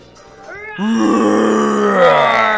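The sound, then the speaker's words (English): Children imitate a lion's roar with their voices: a short rising vocal sound, then one loud, sustained, growling roar that holds steady for nearly two seconds. “they are going to give us their best imitations of lions.”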